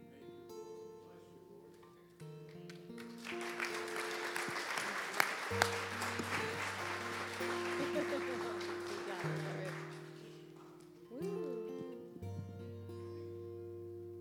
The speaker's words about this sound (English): Give him a hand clap one more time. That was awesome. Wow.